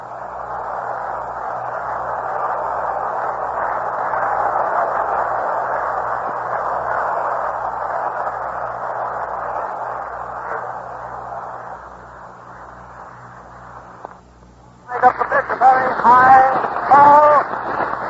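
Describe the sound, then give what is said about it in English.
A standing baseball stadium crowd cheers Joe Medwick's long home run into the upper deck of the left field stand in a long, steady ovation, a dense roar that holds for about fourteen seconds before fading slightly, then a man starts talking. “Listen to that crowd for a moment.”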